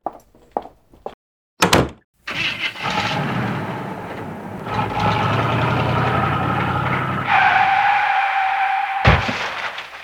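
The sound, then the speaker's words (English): A stage sound effect of a man getting into a car and crashing: a car door slams, then an engine starts and revs steadily before tires screech in a rising squeal that ends in an abrupt, loud crash. No one speaks. “He went off stage pretending to get into a car and had the sound effects guy make it sound like he symbolically killed himself!”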